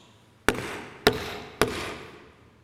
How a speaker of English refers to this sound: The picture here is of a judge knocking. How do you think a judge knocks?